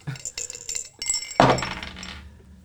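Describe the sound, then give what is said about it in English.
Several light glassy clinks ring out, then a louder splash and a rush of liquid pouring into a glass for about a second before fading. No one speaks. “I really poured up a nasty one, too.”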